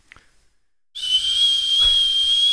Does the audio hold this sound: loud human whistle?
yes